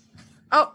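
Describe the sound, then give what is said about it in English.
A single sharp dog bark rings out, loud and brief, preceded by a faint, muffled rustle against a low steady hum. “Oh, and of course, as soon as we start recording, your dogs are such podcast attention whores.”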